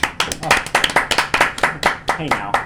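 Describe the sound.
A short burst of applause: quick, loud, irregular hand claps going throughout, with voices cheering or whooping underneath.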